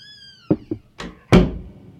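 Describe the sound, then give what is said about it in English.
A door swings shut as someone leaves: a couple of light clicks, then a rushing swish and a solid, heavy thud that fades out. No one speaks. “That's why the door closed.”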